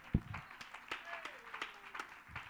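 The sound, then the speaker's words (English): An audience claps in praise to God, with scattered, irregular hand claps ringing out and a faint sustained tone and murmuring voices underneath. “Oh, somebody ought to give God a hand clap of praise for a moment.”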